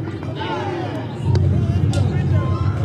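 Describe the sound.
A baseball crowd of Bulldogs fans: a steady murmur swells abruptly into louder, sustained cheering partway through as a batter gets a hit, a dense wash of many voices with a few sharp shouts rising above it.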